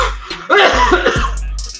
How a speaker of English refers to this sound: I was holding that cough back for like 2 minutes.